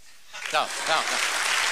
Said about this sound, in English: should we try it now, see who's met the most candidates? What the heck? Let's try it now, okay? I want you to keep applauding until it no longer applies to you, all right?